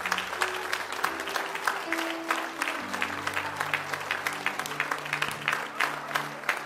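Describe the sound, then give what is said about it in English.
An audience breaks into sustained applause as a hand clap of praise to God, dense hand clapping rolling on steadily for several seconds, with sustained organ-like tones humming underneath and no spoken words. “If you are, I want you to give God the greatest hand clap of praise you've done all day.”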